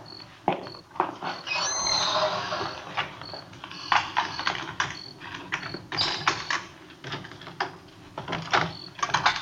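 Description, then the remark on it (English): A house front door at 1456 Collis Avenue being unlocked and opened at 10:38 p.m.: a rapid series of metallic clicks and rattles from a key working the lock, then a latch clunk and the door swinging. No one speaks. “It was 10:38 p.m. when I got to 1456 Collis Avenue, the front door.”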